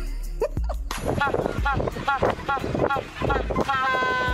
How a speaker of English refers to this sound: So, we have a special guest noise from a penguin. Oh, my gosh. It's a penguin doing an air horn. Can we play it?